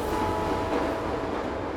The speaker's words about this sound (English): Trains were robbed before the Renos got into the game, but those incidents involved idle trains in depots and freight yards. The Renos wanted to rob a train on the move, which is way more impressive.